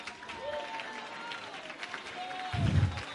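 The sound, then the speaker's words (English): An audience claps steadily in a dense, sustained patter, with scattered voices calling out above it and a deep, booming thump rising near the end. “Come, somebody clap one more time.”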